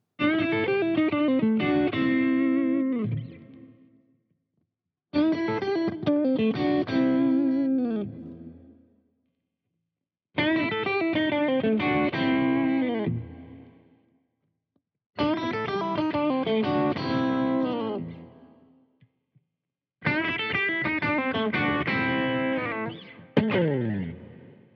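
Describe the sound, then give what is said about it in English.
Electric guitar played through Gatekeeper GKPS Strat single-coil pickups with Alnico 5 magnets and vintage-style stagger, run through the five-way tones in five short phrases separated by brief silences, each repeating a similar riff with a bright, slightly overdriven tone that changes subtly between takes. “So that was the Gatekeeper GKPS Strat pickups.”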